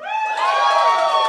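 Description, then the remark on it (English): A loud burst of crowd cheering, several voices whooping together in sustained high cries over a faint wash of clapping, lasting under two seconds. “All right, show of applause”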